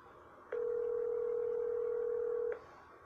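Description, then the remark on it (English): A single ringback tone on an outgoing phone call: one steady, mid-pitched electronic burr lasting about two seconds, then cutting off, over a faint hiss with no voices. “She's calling the person to text her about the door being slammed in.”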